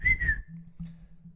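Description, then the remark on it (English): A person whistles a shrill, steady tone in two quick bursts, imitating the nonstop whistling of UTSA fans at a game, then it fades into a low background hum. “Give me a reenactment of what they do. Was like nonstop, but louder. I'm not a good whistler, but it's...”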